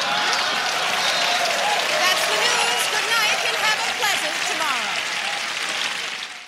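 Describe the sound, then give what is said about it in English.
A studio audience cheers and applauds an exchange of put-downs between Jane Curtin and Dan Aykroyd, with dense clapping and whoops and shouts running through the whole stretch before it starts to taper off at the end. “As you heard, Jane Curtin did get some cheers for her put down of Dan Aykroyd, but nowhere near the level of cheers and jubilation that Dan Aykroyd received for his horribly sexist diatribe”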